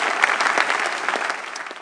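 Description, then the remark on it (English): A church audience claps their hands together in thanks to God, a dense, steady burst of applause, many overlapping claps forming a loud, continuous wash of sound with no voices standing out. “As you clap your hands, the same favor will come upon you.”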